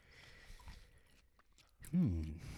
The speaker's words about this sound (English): It's some chewing, eh?